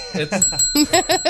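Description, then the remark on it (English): A tapped desk bell, used as a censor sound over speech, rings out and its bright, steady tone lingers through the whole moment while a voice keeps talking over it in short bursts. “I don't want tap the bell me.”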